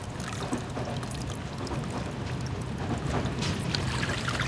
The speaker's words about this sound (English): Water's leaking from the capsule! Bad valve! Close that valve!